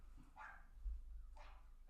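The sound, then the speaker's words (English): A dog barks twice, two short separated yaps about a second apart, faint over a low steady outdoor rumble, with no one talking. “I think he was no the other dog barking, bro.”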